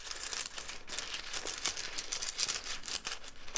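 Small hard rune pieces shuffled and clattering together in a bag or pouch, a steady rustling rattle with quick clicks, fairly quiet, no voices.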